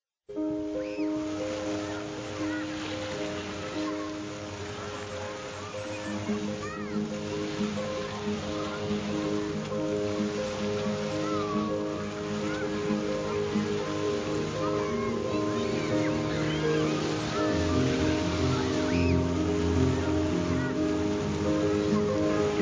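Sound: water flowing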